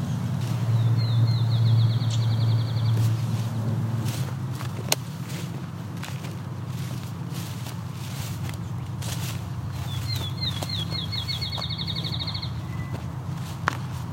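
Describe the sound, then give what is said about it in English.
Several field sparrows give ticking calls, a few sharp, isolated ticks scattered through steady outdoor background noise, with two faint trilled bird phrases and no talking. “A lot of field sparrows here. They're ticking at me.”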